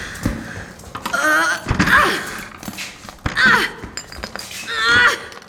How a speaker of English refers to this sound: Launching your body at the door is not going to open it. You're like 50 pounds. Not gonna open, huh?